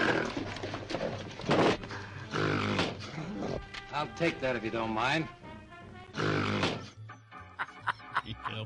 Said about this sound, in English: Was he growling or something? They only had the one sound effect, apparently, for the gorilla. Playing that over and over.